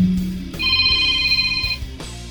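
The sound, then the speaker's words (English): A phone ringtone sounds once, a bright steady electronic chime lasting about a second, rising clearly over a low rumbling background before cutting off. “I turned that damn phone off.”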